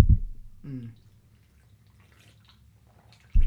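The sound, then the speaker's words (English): A single short, wet slurp of beer, a brief rising gurgle with a pitched edge, framed by dull thumps before and after and a low murmur in between. “I hope those slurps are in it.”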